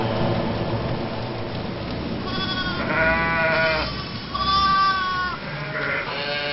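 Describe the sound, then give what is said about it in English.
Several sheep bleat in overlapping, wavering cries, loud, over a steady hissing background like rain. No one speaks. “Which will turn your audience into the sheep that they truly are.”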